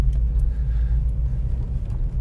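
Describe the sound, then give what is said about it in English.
A royal blue 1970s Corvette Stingray's deep engine rumble fills the moment, loud and steady throughout with no talking, a low throaty drone that holds constant rather than swelling and fading. “And oh, hey, there's that Corvette I've always been looking for.”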